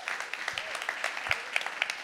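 An audience applauds steadily, a dense patter of many hands clapping at once, holding at an even, moderate level with no voices on top.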